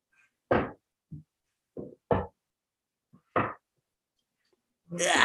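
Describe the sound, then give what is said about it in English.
A chair being shifted around: a handful of irregular thuds and knocks spaced over several seconds, ending in a louder, rougher scrape. No one speaks. “So hold on, I need to move a chair.”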